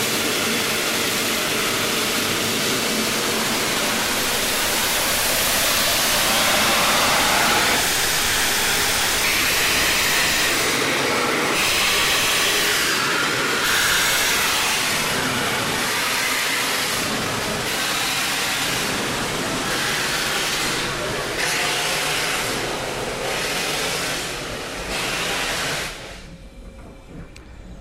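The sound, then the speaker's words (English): A steam locomotive pulls away from Ropley towards Medstead and Fourmarks, hauling the first train, with broad hissing steam and rhythmic chuffs that quicken in regular bursts, loud, with no talking, before fading at the end. “The locomotive's now set off towards Medstead and Fourmarks, hauling the first train.”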